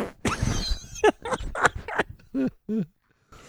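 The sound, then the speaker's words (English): A fart into a microphone sputters out in a series of short, raspy bursts, ending with two brief squeaky, tonal toots and a quiet pause. “Do you just stick your microphone next to your ass? You farted, huh?”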